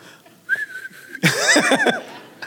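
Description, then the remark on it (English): A person whistles a steady, sustained note, then breaks into a louder, warbling burst of whistling with a breathy vocal edge, whistling to call back a donkey. “I think … was probably whistling for the donkey.”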